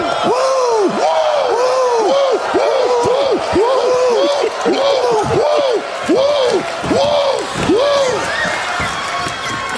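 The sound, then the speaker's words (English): A large crowd at a wrestling show repeatedly yells rising-and-falling "woo!" calls in a steady rhythm, roughly one per second, loud with a roaring arena din underneath. “You can't go anywhere with a crowd of people without everyone breaking out and well, doing the woo.”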